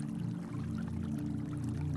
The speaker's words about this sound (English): The rushing water sounds like susurrating distant thunder, with aquatic whispers that you like to pretend hold the secrets of the forest.